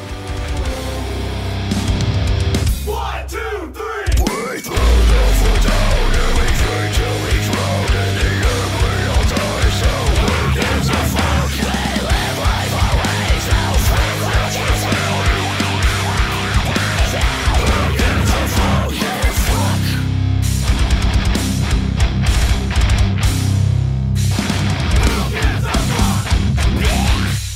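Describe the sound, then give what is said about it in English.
A loud, dense rock song with heavy driving instruments and harsh screamed vocals, playing continuously, with a brief break early on and another short dip partway through. “Holy shit, stand up and scream. Hell yeah. And that, yeah, at the end, I love a good blah.”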